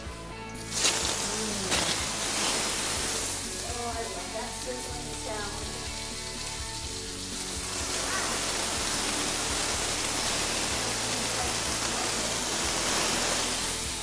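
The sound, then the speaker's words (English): Chicken breast frying in olive oil in a hot pan: a loud, steady crackling sizzle that flares up at the start and hisses on without a break, with faint voices briefly underneath. “All right, now it's time for the chicken breast to go in.”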